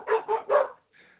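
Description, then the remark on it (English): A dog barks three times in quick succession, clear, followed by a brief, fainter whine-like yip. No one speaks. “Dog start barking.”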